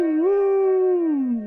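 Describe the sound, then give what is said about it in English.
Someone imitates a train whistle with one loud, sustained hooting tone that swoops up slightly, holds steady, then sags lower at the end. No words are spoken. “Insert train noises here.”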